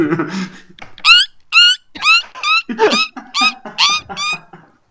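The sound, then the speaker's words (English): A voice imitates a bat, sounding more like a dolphin, making a rapid series of about eight high, piercing squeaks in quick rhythmic bursts, loud, after a brief breathy lead-in. “That was slightly more hockey dolphin, but I'll take it.”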